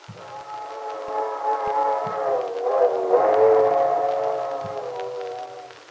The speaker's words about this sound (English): There it goes. Yes. You know, listening to that old train whistle gives me the feeling you get sitting inside by a fire in the winter when it's snowing outside. Makes what you have seem all the more precious.